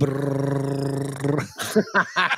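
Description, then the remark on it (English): A dog standing in front of a running fan set at a studio doorway barks into it, one drawn-out, low warbling bark with a choppy, distorted tone, followed right after by people talking. “He starts barking. It sounds like Darth Vader.”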